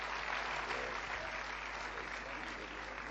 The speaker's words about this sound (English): Praise the Lord. Let's give Him a great clap. Praise You.